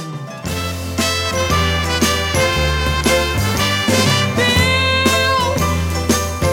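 An upbeat pop song plays loudly, bright chiming bell tones ringing over a steady bass line and regular rhythmic beats, with no voices heard.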